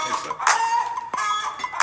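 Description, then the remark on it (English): Fairly loud chicken clucking in a Kentucky Fried Chicken (KFC) commercial: a few sharp, throaty clucks in quick succession over a busy, buzzing background, with no one speaking. “That's why you're playing this commercial. Yeah. Kentucky Fried Chicken.”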